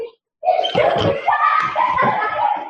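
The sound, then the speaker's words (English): Children having a water fight shout and laugh excitedly over a steady wash of splashing water, with bursts of slapping splashes rising and falling throughout the short, lively scene. “Oh, something going on. They're having a water fight.”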